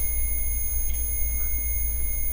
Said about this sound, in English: Should I start Morse coding this? Sometimes it's Morse code, sometimes it's not. I've seen that happen like once or twice. Yes. See, that's not Morse code. It's just now it's just beeping like crazy.